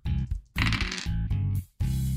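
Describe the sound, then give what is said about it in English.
Dice are rolled at the end of a player's turn, rattling and clattering in a few quick, loud bursts separated by brief pauses, a busy tumbling sound across a hard surface with no one talking. “At the end of his turn, he rolls.”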